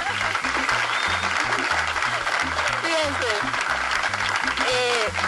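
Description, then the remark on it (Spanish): A crowd claps steadily and loudly throughout, a dense crackling wash of applause over a rhythmic, thumping bass beat, with a voice briefly speaking over it. “Vamos a dar un aplauso, porque eso merece un aplauso.”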